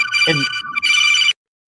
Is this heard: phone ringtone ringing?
yes